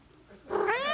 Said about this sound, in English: Wow, he nailed the wave as the cat sound played.